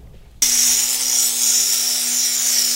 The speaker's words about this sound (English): Because when you cut into these shells... Oh, it's warm. Yeah, a little bit of water, we can spritz it on there, cool it off.